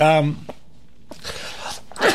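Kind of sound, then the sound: human body sound, sneeze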